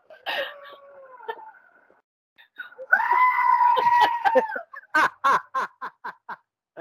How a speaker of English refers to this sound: It's wonderful. That, of course, is the original goat screaming. Let's hear it just one more time.